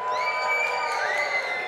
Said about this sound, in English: And the crowd was so large that after they watched the tightrope walker make it to the other side, the crowd screamed and cheered. The crowd screamed and cheered.